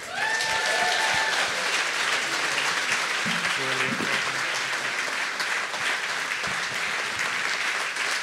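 Steady, sustained applause from an audience, dense clapping that holds at an even loudness throughout, with a brief whistle near the start and faint voices mixed in underneath.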